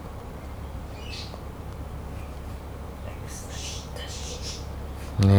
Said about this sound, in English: Why is the bird so noisy?